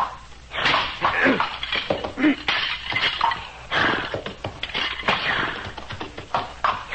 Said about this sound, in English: The antler of the moose is brittle. I will break the antlers of the dead one with my tomahawk.